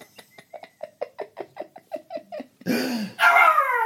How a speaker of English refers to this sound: Oh, you made the dog bark again there